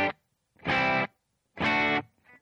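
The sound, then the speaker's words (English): Two loud strummed chords on a clean electric guitar with reverb, about a second apart, each ringing briefly before a short reverb tail fades into silence. “And that oftentimes a good clean sound is not purely clean. And I have some reverb on here.”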